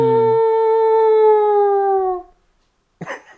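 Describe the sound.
A voice mimics a wailing air-raid siren: one loud, sustained tone held for about two seconds, sliding slowly downward before fading. After a brief silence comes a short vocal burst.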